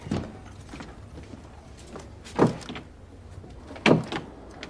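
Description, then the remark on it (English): A locked door is rattled and jolted a few times, sharp knocking thuds spaced a second or two apart as someone tries the handle and it won't give. “Why is the door locked?”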